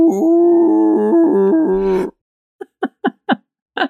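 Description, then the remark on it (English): Whale noises: a loud, drawn-out tonal moan that steps up and down in pitch for about two seconds, then a pause and a rhythmic run of five short, grunting calls. “We've got whale noises, but I can't mess with your head.”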